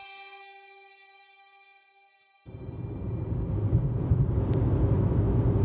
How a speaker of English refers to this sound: All right, I am driving into Scunthorpe.